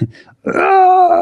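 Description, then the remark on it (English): A short low vocal sound is followed by a loud, anguished scream held on a steady, strained pitch for nearly a second. It sounds like a drawn-out, wailing cry, the scream of a Hellfire Club goon tormented by a vision of Wolverine. “That scream, I've never heard anything like it.”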